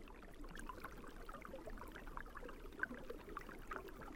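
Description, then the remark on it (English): Shallow stream water, about 6 inches deep, trickles and bubbles steadily under ice over a rocky stream bed, with a continuous gurgling, slightly hollow flow and small splashy pops scattered throughout. It sounds fairly quiet, with no voices. “You can hear that kind of hollow sound of the water running under the ice.”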